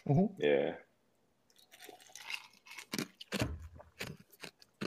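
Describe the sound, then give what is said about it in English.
Someone crunches an ice cube in their mouth, a run of sharp, brittle cracks and grinding chews after a brief voiced sound at the start. “You know what's great for podcasts? Ice crunching.”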